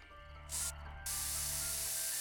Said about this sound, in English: Lori bent down on the floor and sprayed the carpet cleaner.